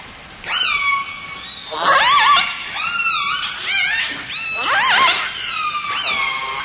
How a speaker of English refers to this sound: I think we should just play whale sounds while I do this.